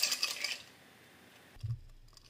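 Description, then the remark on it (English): A quick run of sharp, bright metallic clicks, followed by a pause and then a duller low knock, with no talking. “If this thing does not stop clicking.”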